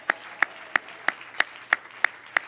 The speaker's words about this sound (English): Everybody clap your hands to the Lord and shout yes.